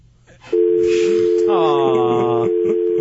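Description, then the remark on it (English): A caller's phone line drops into a loud, steady dial tone that cuts in abruptly and holds unbroken to the end, with a voice briefly talking underneath it. “His phone keeps crapping out.”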